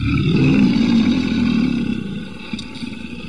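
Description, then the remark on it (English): A deep, rumbling mountain lion roar sounds loud as the lion attacks, holding steady for a couple of seconds before trailing off into a lower growl. No one speaks. “And as we walk further on, we stumble upon the dreaded and dangerous mountain lion. The lion attacks.”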